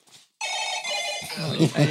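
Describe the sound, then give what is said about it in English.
A phone rings with a bright, sustained electronic ringtone that starts abruptly after a brief pause, fairly loud, with people talking underneath as it continues. “I'm the one who didn't turn it off.”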